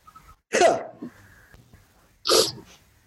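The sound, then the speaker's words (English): Two sharp, loud sneezes about two seconds apart, each a sudden bursting exhale with quiet breathing and near silence in between. “I sneezed.”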